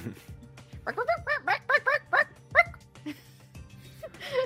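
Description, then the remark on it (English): A person vocally imitates a barking chicken: a quick run of about six sharp, yappy bark-like yips, fairly loud, followed by a pause and a brief squeaky cry. “It's a barking chicken.”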